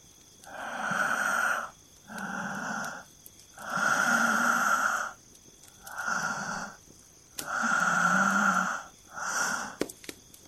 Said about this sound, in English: As she did, she heard that familiar sound, the wet-lipped rasp of his heavy breathing.